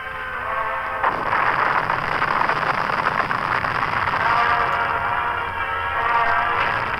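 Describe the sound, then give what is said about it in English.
A barrage from Canadian guns and heavy mortars, laid to clear the way for tanks and infantry, roars steadily, its many blasts blurring into a dense, crackling rumble that swells after the first second and stays loud throughout, with no voices. “But Canadian guns and heavy mortars laid a deadly barrage to clear the way for the tanks and infantry.”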